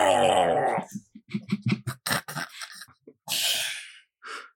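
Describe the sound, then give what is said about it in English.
A voice imitates a giant frog's noise in a pot: a strained, high squealing cry, then a quick run of sputtering, croaky bursts, ending in two breathy hisses. “You should hear the noise they make when you put them in the pot.”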